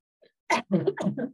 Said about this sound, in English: And so this is the, hold on a cough.